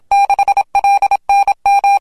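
Morse code tones spelling the call sign KJ6: a steady, fairly high-pitched electronic beep keyed on and off into short dots and longer dashes, arranged in four quick groups with brief pauses between them, loud and with no talking.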